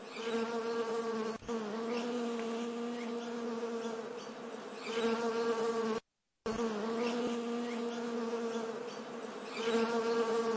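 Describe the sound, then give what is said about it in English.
Honeybees at beehives in Narrowsburg, New York, in the Delaware River Valley of the Sullivan County Catskills, on a fall day, buzz in a steady, continuous drone with a clear harmonic hum that swells slightly at times, broken by a short silent gap midway. No one speaks. “I am in Narrowsburg, New York, in the Delaware River Valley Basin of the Sullivan County Catskills, and it is an amazing fall day, and I am looking at some honeybees, some beehives.”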